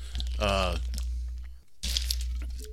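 Someone drinking ice water: a brief vocal sound, then short bursts of ice crunching and rattling over a steady low hum.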